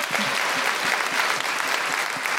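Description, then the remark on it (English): An audience breaks into steady applause, a dense wash of many hands clapping at once, fairly loud and sustained with no voices rising above it. “Every time Leyla Hussein speaks, she gets a round of applause.”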